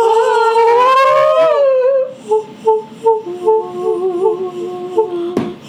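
A dog lets out a long, wavering, high-pitched howl, then shifts into a series of short, rhythmic whimpering whines that rise and fall, ending with a brief sharp thump.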